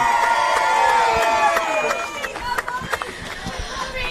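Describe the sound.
A crowd cheers loudly, with high whooping voices sliding downward, while scattered claps break through and grow more distinct as the cheering fades slightly toward the end.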